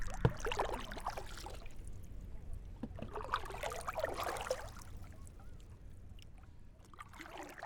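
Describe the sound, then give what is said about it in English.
A rowboat glides through water: soft swishing and gurgling along the hull swells twice, then fades into a quieter, steady wash. No one speaks. “A true rowboat has an easy motion through the water and, most important, glides between strokes. That's what I'm doing now, just gliding through the water.”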